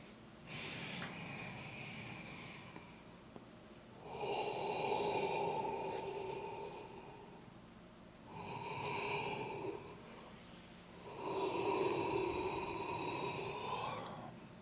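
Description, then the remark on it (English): Slow, deep breaths, followed by drawn-out voiced yawns, two of them in quick succession near the end, each swelling loudly then trailing off, with no talking. “And you see, sometimes I even feel like I want to get a double yawn in there.”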